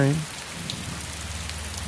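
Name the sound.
rain with thunder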